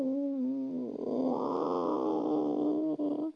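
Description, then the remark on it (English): A drawn-out, wavering meow lasting a few seconds, most likely a human voice imitating a kitten, fairly loud, rising into a strained, growly middle before trailing off. “Turned on the flashlight, and indeed, there was a very cute little kitten. And the cat went, meow.”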